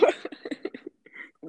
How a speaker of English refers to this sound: Sorry, I'm literally gonna cough.